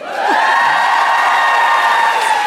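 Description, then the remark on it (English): A live audience cheers and claps for a woman being introduced, in a loud, steady roar that swells in quickly and holds for a couple of seconds, with a few high whoops rising out of the crowd. “There was one person at the back not clapping.”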